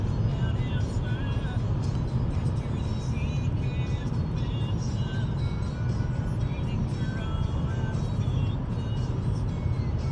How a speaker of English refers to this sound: A little commentary on the road. Traffic is light. Traffic is very manageable.